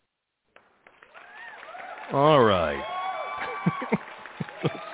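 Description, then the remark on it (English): A canned applause sound effect on the Cinephiles Radio show, of scattered claps and crowd noise, runs under a short spoken phrase, with sharper individual claps popping out toward the end. “All right, let's give him a little clap here, right?”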